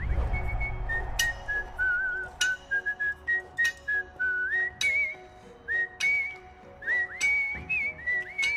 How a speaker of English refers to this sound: But he whistles the theme.